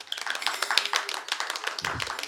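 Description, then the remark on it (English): Audience applause for the panelists of a panel: many hands clapping at once in a dense, steady crackle of sharp claps that keeps an even level for a couple of seconds, with no voices. “Let's give our lovely panelists a little round of applause.”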